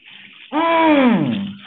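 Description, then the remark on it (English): Water runs steadily with a soft hiss, then a loud, tonal whine swells in and slowly slides downward in pitch, like plumbing straining as a shower flows. “I said, well, he probably just went ahead and got on in the shower.”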